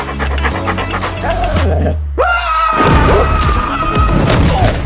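A big dog pants heavily and loudly, its rapid breaths running through the whole stretch with a low rumbling thump underneath and no one speaking.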